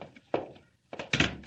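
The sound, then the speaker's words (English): The Commissioner's office door swings shut: a soft thunk, a brief pause, then a heavier latching thud with a short rattle. No one speaks. “Yes, come into my office and close the door.”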